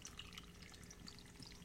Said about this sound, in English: As I'm pouring a drink. I was going to say, were you just slugging that?